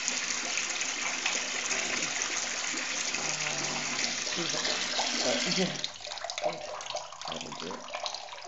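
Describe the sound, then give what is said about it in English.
Hot water gushes steadily and loudly from a tap into a bathtub for about six seconds, then the flow stops, leaving quieter sloshing and splashing in the tub. “That was hot water. Thank God, I'm very thankful for hot water.”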